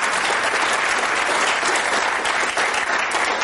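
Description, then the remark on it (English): Sustained audience applause for the day's speakers, a dense, steady wash of many hands clapping at an even loudness throughout, with no clear individual claps standing out and no voices. “If you would give them a round of applause.”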